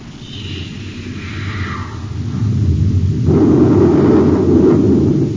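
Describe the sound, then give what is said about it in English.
A space torpedo, fired from a spaceship close to another ship's port side, whistles downward in pitch as it launches, then bursts into a loud, sustained rumbling explosion that roars on to the end. No one speaks. “Fire a space torpedo close to his port side, Hap.”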